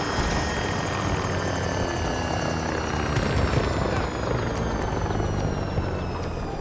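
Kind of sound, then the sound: vehicle, helicopter rotor noise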